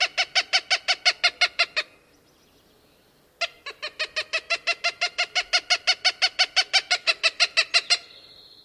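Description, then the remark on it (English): A northern flicker gives a shorter rapid series of harsh repeated notes, then after a brief pause a Cooper's hawk gives a long, loud, steady cackling run of similar harsh notes; no talking. “First the northern flicker, and then the Cooper's hawk.”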